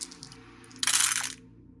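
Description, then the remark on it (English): A short, dense clatter of fourteen dice tumbling across a table for a persuasion roll in a tabletop game, about half a second of bright rattling over a quiet low hum, with no one speaking. “Sounds like a lot of dice.”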